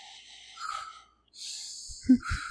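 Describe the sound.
A voice imitates the heavy, menacing breathing of horror villain Michael Myers: two long, airy breaths with hissing, whistly edges, followed by a short burst of low, rough throaty sounds.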